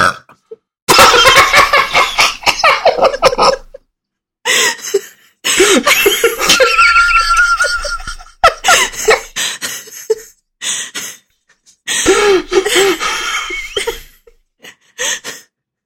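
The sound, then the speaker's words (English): A person burps loudly into a microphone: a long burp rumbles for several seconds, followed by more croaky belching bursts and breathy, laugh-like sounds, with no speech. “Why did you burp so loudly into your microphone?”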